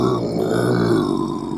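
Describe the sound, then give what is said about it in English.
A person growls in a low, rough, sustained rumble lasting just over a second and a half. It stays loud and steady throughout, with no words spoken. “Are you growling at me?”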